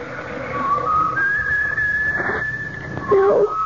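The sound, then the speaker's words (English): A kettle heating water for instant coffee whistles with a steady, high-pitched tone that holds for a few seconds, then warbles and wavers in pitch before rising briefly louder near the end. “Lucky I left the kettle out.”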